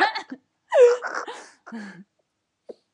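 A person clears their throat before sharing words of wisdom, in a few short, raspy, voiced bursts over about two seconds, followed by quiet with a couple of faint clicks.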